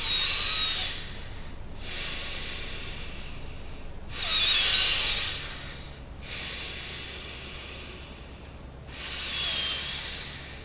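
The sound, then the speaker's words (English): Deep, forceful breaths in a steady rhythm, pumping as if preparing to dive or hold the breath, three sharp rushing inhales alternating with longer airy exhales, with no talking. “So let's do some really good breathing, right?”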